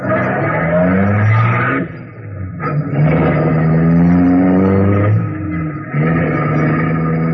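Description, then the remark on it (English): A black Mazda's engine revs hard as it accelerates away from across the street, its pitch climbing through three surging gear changes with brief dips between them. It sounds loud, with no voices. “He's getting into the car across the street, that black Mazda down. There he goes.”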